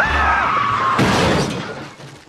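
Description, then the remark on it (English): A cartoon car driven by Homer Simpson crashing into a chestnut tree in The Simpsons: a high, wavering screech glides downward for about a second, then a loud smashing impact breaks out, followed by shattering, rattling debris that fades away. “From the town of Springfield, he's about to hit a chestnut tree.”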